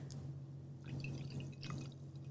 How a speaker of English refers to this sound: I'll have your finest twist off of wine. All right, and the pours.